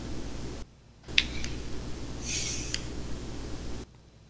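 A slow, drawn-out human breath, heard as a soft airy hiss that swells to its loudest midway through, over a steady low hum, with no one talking.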